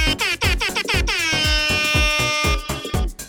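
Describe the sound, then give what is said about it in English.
A loud, blaring air horn blows one long sustained blast, preceded and followed by shorter bursts, all over a pounding, steady bass beat with no talking. “This episode was brought to you in part by Air Horns. Air Horns can celebrate any occasion.”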